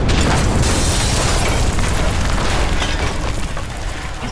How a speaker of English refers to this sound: a second explosion rang out as the proverbial welcoming committee encountered my first tripwire-activated explosive.